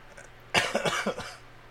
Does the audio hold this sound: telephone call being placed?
no